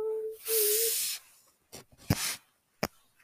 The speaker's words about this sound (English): I'm gonna take off my coat. It's making a bunch of rustling noises.